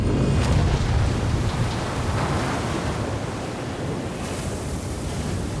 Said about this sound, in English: The Isuzu Havid rolls onto her side, and with a huge bang, the catches on the external doors break under the pressure, letting in a crushing flood of water.